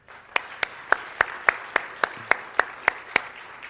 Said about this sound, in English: Okay, you clap for the scripture reading, you clap for them. I'm wondering if you're going to clap when the sermon's over.